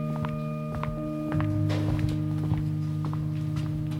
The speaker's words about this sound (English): And in the La Fortune main lounge, where it can be hard to carry on a conversation because of the noise, the only sound to be heard were my footsteps.